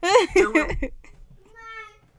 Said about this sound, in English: Well, this is how. And how to do it. Right. Just do it with the kids screaming.